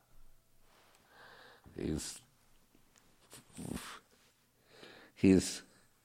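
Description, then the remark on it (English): A large dog named Benz breathes heavily in bursts, with three loud, rough snorting exhales spaced a couple of seconds apart and quieter panting sniffs between them. “And of course, their own way is myopic in the sense that you're hearing Ben's here breathing.”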